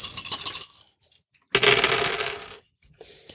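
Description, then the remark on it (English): Dice clatter and spill onto a hard tabletop in two bursts, rattling and rolling briefly before settling, followed by a faint final tumble, as players roll for an intuition and stealth check in a tabletop game. The sound is fairly loud, with no talking. “Dice everywhere.”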